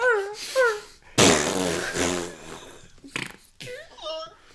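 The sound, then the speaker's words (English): A voice imitates fart noises: a few short squeaky toots, then a long, loud, buzzing raspberry, followed by more brief sputtering blurts, all prominent. “there's just like a bunch of cages filled with dogs, and they're all just farting, and it's all just moving into the briefcase.”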